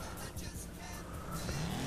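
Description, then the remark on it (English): An old car engine accelerates, its steady rumble climbing in pitch toward the end over a rough, constant roar. No one speaks. “My car's maybe moving the pretty good right there, by the way, for as old as it was.”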